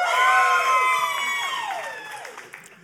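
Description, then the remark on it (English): A loud audience screams and cheers, many high-pitched voices shrieking together in a sustained burst that gradually fades over a few seconds. “You who had the screaming.”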